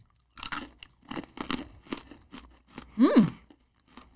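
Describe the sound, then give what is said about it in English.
Crunching as someone chews spicy sriracha roasted peas, a crispy snack, with a steady rhythm of sharp, brittle bites and one louder crunch near the end. No one speaks. “It's a very satisfying crunch. When you think peas, you think squishy. It's very crunchy.”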